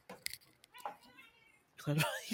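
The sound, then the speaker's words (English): A cat meows loudly a couple of times, drawn-out wailing calls rising at the end, with people talking around them. “This cat behind me. What is going on with this cat?”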